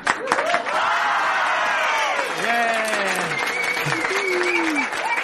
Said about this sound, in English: That's the first applause I think I've ever gotten.